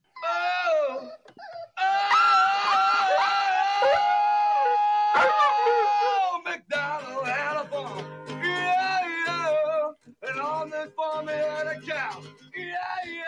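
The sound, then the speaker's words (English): A man sings badly: loud, wavering, off-key singing drawn out in long wailing notes across several phrases, with brief pauses between them; the strained pitch almost sounds like howling. “He sings badly, dogs run away, children cry.”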